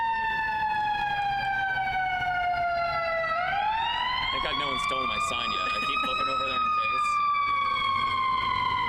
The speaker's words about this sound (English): That siren actually sounds normal. Yes. That's that weird one.